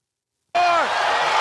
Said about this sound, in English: Let's track the audio here for the chair shot.